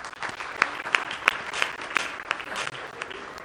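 An audience breaks into applause, a dense wash of many hands clapping steadily, with a few sharper, louder claps popping out of the crowd noise at a quick, uneven rhythm.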